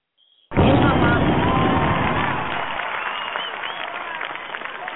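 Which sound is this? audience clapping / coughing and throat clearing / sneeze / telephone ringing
audience clapping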